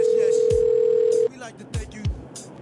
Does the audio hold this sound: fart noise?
no